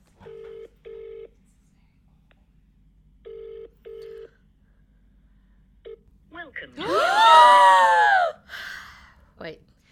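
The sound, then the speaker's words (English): A phone call to a sister rings twice with a double-burst ringback tone, a steady pause between each pair, then someone picks up and a loud, excited voice answers on the line. “Do you mind if I call her and just ask her?”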